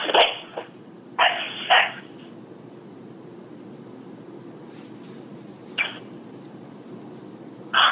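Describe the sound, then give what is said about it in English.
A dog named Snoozer barks on a voicemail recording in sharp, clipped bursts: a quick pair near the start, then a couple of isolated barks later, with no voices and a steady low hiss throughout. “That's a period of time when you hear a snoozer, her dog, bark 2 times.”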